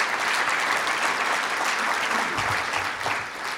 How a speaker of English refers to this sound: The companion, yes, we can clap for that.